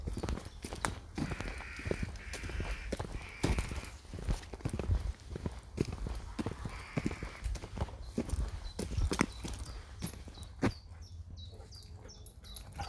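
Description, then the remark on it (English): Birds tweet in short, high-pitched bursts, mostly faint, on a warm day, over a steady run of loud clip-clopping hoofbeats, with a few sharper chirps near the end. “Birds tweeting.”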